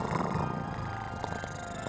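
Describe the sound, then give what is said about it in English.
A person imitates a cat's purr into a microphone, a steady low rumbling vibration that continues for a couple of seconds with no other speech. “Purring into the microphone.”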